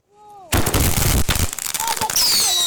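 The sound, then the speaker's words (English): Fireworks exploding at night in Vancouver around Halloween: a rising whistle, then a loud, rapid barrage of crackling bangs for about a second, followed by more whistling squeals and a sustained hiss. “I just heard fireworks going through the night.”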